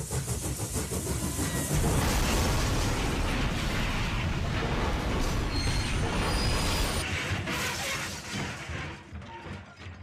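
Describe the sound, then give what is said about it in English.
A train wreck sound effect: a loud, sustained roar of crashing metal and rumbling with screeching high tones, holding steady for several seconds before gradually fading out. “Is there audio of like a train wreck?”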